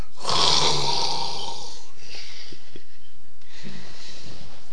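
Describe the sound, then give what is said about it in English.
A person mimics a loud snore, one long rasping inhale followed by quieter snorting breaths, with no other talking. “It's all about trade and politics. I'm snoring.”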